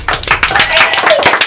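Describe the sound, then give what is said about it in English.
A brisk round of applause from a small group as contestants' scores are announced, dense irregular claps running loud and steady for the whole moment, with a few voices mixed in underneath. “Guys, big round of applause.”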